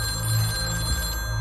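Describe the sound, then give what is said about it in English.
A telephone rings with a steady, continuous electronic tone that holds evenly throughout, fairly loud, with no voices present. “I only looked up when my phone wouldn't stop ringing.”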